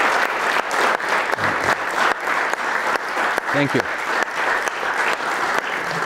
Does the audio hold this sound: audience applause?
yes